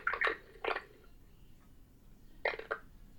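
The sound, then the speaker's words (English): Someone eating Funyuns from a bag into a microphone: three short clusters of wet, crackly chewing and mouth noises, with quiet pauses in between and no talking. “That eating sound, like before, is coming through.”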